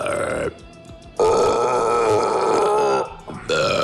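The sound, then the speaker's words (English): A voice imitates loud, drawn-out drunken burping into a toilet: a long, resonant belch-like groan, with brief breaks before and after it and no other talking. “When I was drunk and burping into the toilet.”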